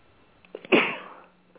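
A single sharp sneeze bursts out after a brief intake of breath, loud and close, then trails off over about half a second. No one speaks.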